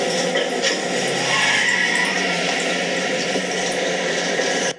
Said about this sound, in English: are you by any chance wanting to pour some more rum? What makes you think that? Let me just finish my glass. Rum in hand. Okay, top them both up then while you're at it